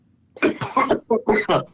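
A burst of harsh, choking coughs, about five rapid spasms in a row, loud and close, with a short gasp in the middle and no talking.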